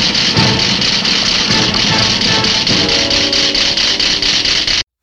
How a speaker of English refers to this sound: The bomb rattles. Its annoying alarm goes off. Somewhere in here, you got to put a sound clip of that in because it's really grating.